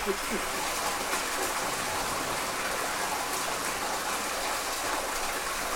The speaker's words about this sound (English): and he opens his vest, and a bunch of water starts pouring out of his vest.